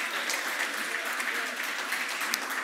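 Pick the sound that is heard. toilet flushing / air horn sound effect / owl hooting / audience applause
audience applause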